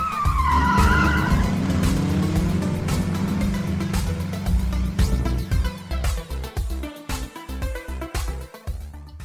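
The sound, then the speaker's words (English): Loud car tires screech in a sustained, wavering squeal over a roaring engine as a foot slams the gas pedal, followed by a rumbling, choppy stretch of revving and skidding noise. No one speaks. “You see all the gas pedals and the foots slam on the gas pedal and cuts to black as you hear tires screech.”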